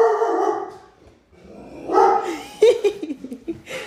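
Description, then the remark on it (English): A dog gives a drawn-out, wavering howl, pauses briefly, then breaks into a string of loud, sharp barks and yips. “His ears, though, when he's barking, it's hilarious.”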